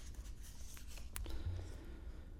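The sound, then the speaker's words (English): Soft rustling and crinkling of a piece of paper being pulled out of a bag, with a sharp snap partway through. It is fairly quiet and no one speaks. “maybe you could pull something out and see what we got.”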